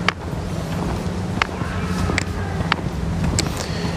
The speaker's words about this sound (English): And you can hear the birds.